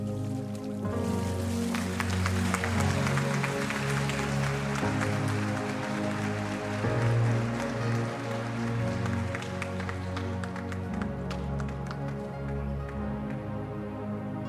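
A church audience applauds steadily for several seconds after a baptism, a dense, continuous patter of many hands clapping over sustained, droning music that plays throughout.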